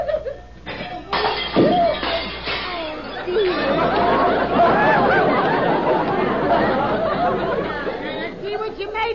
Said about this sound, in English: You shouldn't buy such slippery soap. Dishes are leaping out of my hands all by themselves. Well, what did you break? Well, you know that gravy boat? Yes. Well, no one will ever sail in it again.